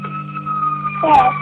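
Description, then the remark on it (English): An ambulance siren, responding to an emergency call, wails with a steady, sustained tone, growing slightly louder toward the end as it approaches, over a low background hum. “We got to get the ambulance to help Mommy, okay? Okay, see the ambulance?”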